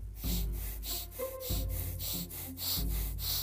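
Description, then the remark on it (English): Fast, deep, forceful breaths of the breath of fire breathing exercise, pumping in and out in a steady rhythm, about two per second, loud with an airy rushing texture and no talking. “But you're when you're breathing in, you're breathing very deeply, and you're breathing out very deeply, but you're doing it fast.”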